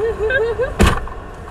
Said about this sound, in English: Close that door. Close the car door.